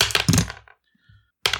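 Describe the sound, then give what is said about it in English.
Loud clatter of dice tumbling across a hard tabletop as players roll initiative, a quick rattling burst that fades, a short silence, then another round of clattering rolls. “I want to grab our dice. I want to roll initiative.”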